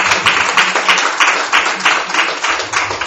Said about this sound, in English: Yes. A round of applause for the Holy Spirit.